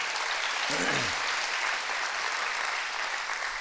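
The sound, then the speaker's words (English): A church audience on Baptism Sunday claps their hands for the large crowd gathered, a steady, dense wash of applause that holds for several seconds, with a brief voice rising under it near the start. “This is an awesome crowd today. Clap your hands for that.”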